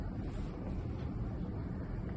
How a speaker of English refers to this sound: Got kind of a humming of the air conditioner here, and we're just using the phone microphone when we're out on the road like this.